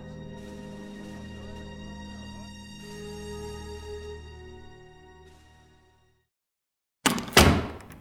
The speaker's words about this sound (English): Is locking the door necessary, Madam Zandra?